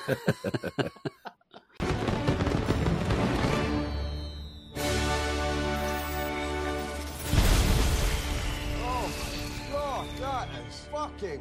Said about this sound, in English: And that's the final sequence of the Kingsman movie. Where they activate all the chips and then all of the heads explode to the tune of Pomp and Circumstance.